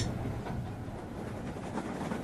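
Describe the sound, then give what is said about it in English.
A steady, continuous rumble of a train that a couple has just managed to catch, rolling along the rails, with faint rhythmic clatter running through the low hum at an even level throughout. “Thank heavens we managed to catch this train.”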